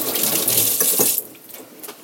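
Tap water runs steadily for about a second with a bright, hissing splash, briefly disturbed as hands are given a quick wash during cooking, then cuts off, leaving faint dripping and handling sounds.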